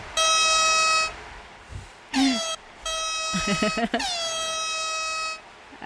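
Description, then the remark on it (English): Loud, brassy air horn sound effect: a long steady blare, a quick sweeping squeal, then another sustained blast with a sliding pitch, heard alone with no talking. “Give us an air horn one time.”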